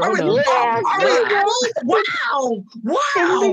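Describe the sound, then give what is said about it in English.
A voice mimics a dog, with a run of high, wavering whines and whimpers and a few short yelp-like bursts, loud, without real words. “What the dog doing?”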